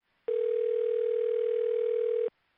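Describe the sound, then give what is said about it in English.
A single steady electronic telephone ring tone sounds for about two seconds, loud, with no voices or other sounds around it. “just about that time the phone rings.”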